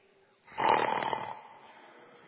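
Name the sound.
snoring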